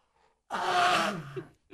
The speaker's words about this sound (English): Great podcasting. Listening to me blow my nose.